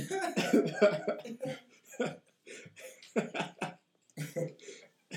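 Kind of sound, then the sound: human body sound, coughing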